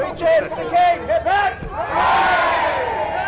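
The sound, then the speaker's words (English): A crowd of mourners, queuing in the cold to pay respects to Queen Elizabeth at Britain's Parliament building, cheers King Charles as he arrives to shake hands. They call out, first in short rising whoops and shouted bursts, then swelling into a sustained, loud roar of many voices. “The crowd cheered the king as he arrived to shake hands and exchange pleasantries with mourners, some of whom had begun lining up in the cold just after midnight.”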